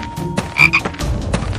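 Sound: frog croaking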